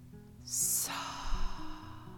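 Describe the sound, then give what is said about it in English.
A single deep, airy breath, drawn in sharply and released more softly, over soft, sustained background tones with no talking; a deep breath taken with a hand on the heart during a guided breathing exercise. “And with your hand on your heart, I would like you to take three deep breaths with me now. Breathing in.”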